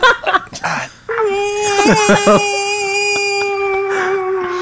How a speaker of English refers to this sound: No, that ain't no damn ghost. That's someone yawning and stretching.